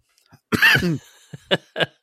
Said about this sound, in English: No, I just coughed.